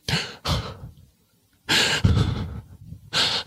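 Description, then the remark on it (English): A person performs heavy, anxious breathing in a series of ragged, audible inhales and exhales with short pauses between them, sounding strained; no words are spoken. “That is my performance of heavy breaths, laden with anxiety, which I felt like those were pretty good anxious breaths.”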